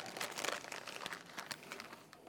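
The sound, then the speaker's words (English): Crinkling of a cough drop wrapper, a steady run of sharp, bright crackles and rustles lasting a couple of seconds, fairly soft and with no voices over it. “Anybody else need a cough drop before I get started?”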